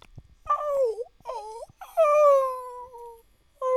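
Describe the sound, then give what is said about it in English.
A person imitates a whale call with long, sliding, moaning tones in a few drawn-out bursts, loud, the last one cut off at the end. “No, it's a fucking whale.”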